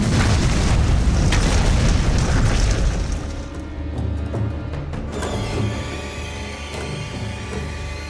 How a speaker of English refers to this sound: As quickly as you notice this, the ground starts to shift and crack.